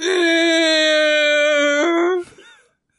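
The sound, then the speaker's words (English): A creaky dungeon door creaks open with one long, steady, high squeal that jumps slightly in pitch near the end, then breaks off into a short rough scrape and fades to silence. “Sorry, my creaky dungeon door just opened.”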